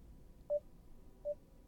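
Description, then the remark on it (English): Two short electronic beeps at a steady mid pitch, spaced about three-quarters of a second apart, sounding clearly over a low background hum with no talking. “I'm picking up like a beeping.”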